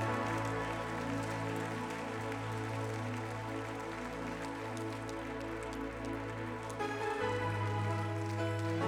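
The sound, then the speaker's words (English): Steady, dense applause from a crowd clapping for the piano player, a continuous crackling patter of many hands clapping, mixed with sustained musical tones underneath; no one speaks over it. “Keep clapping for him.”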